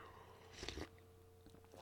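A quick, quiet sip of coffee, a short slurp in the middle followed by a couple of faint mouth sounds, with a low steady hum underneath and no talking.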